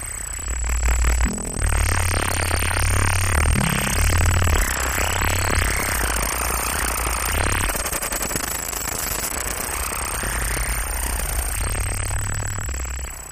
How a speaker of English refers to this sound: Here's a clip of her performance with the Spring Spire, which is a wheel with strings attached to a keyboard based on the application of neural networks to real-time audio synthesis.